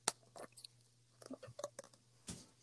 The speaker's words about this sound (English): I was chewing gum.